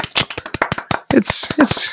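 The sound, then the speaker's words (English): A short burst of quick, uneven hand claps lasting about a second, then voices take over with loud, breathy cheering or exclamations. “I got a round of applause”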